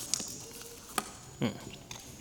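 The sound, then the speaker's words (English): Paper is handled in a few short, crisp rustles: sharp ticks, then a louder crinkling swish midway and a final soft flick, with quiet pauses between. “Let me get up my piece of paper first.”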